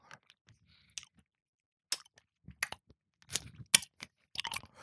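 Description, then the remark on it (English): Someone sucks on a hard boiled sweet without chewing it: wet smacking and sharp little clacks as it knocks against teeth, irregular and intermittent, with quiet gaps between and no talking. “I'm not chewing through this. No, I don't like to chew boiled sweet.”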